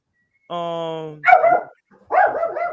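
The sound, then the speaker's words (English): Dogs bark loudly: a drawn-out, whining howl gives way to two rough, excited bursts of barking with a brief pause between them. “God damn it with these dogs.”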